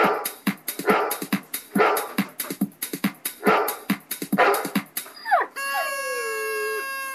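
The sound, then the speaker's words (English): A dog lets out a quick run of choppy yelps and whiny barks, then ends with a long, drawn-out whine that rises and holds steady. “I think he's saying I love lasagna. I think he said he wanted a deep dish.”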